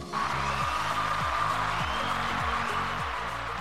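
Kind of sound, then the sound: crowd, applause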